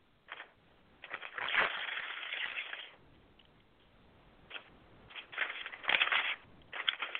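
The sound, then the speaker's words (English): An envelope holding an invitation to a masquerade ball is torn open: bursts of crisp paper ripping and crinkling, with a quieter pause in the middle before more rustling and tearing at the end. No one speaks. “Oh, open the envelope.”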